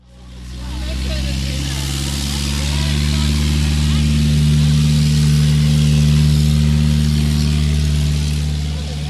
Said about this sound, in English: A little airplane noise as another aircraft departs from Spurwink Farm